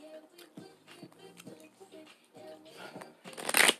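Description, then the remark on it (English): Tarot cards being shuffled for an evening energy reading, in quick, papery riffles beneath a person talking, building to a louder flurry of shuffling near the end. “Energies are in the air right now for us, spirit. I'm God, my shuffles, guys.”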